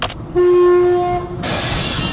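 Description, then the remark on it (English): A ghost train in Berlin sounds one long, steady horn blast, then gives way to a loud, broad rushing rumble of cars moving along the tracks as it departs. No one speaks. “Bonus of a Berlin guide if you take the ghost train.”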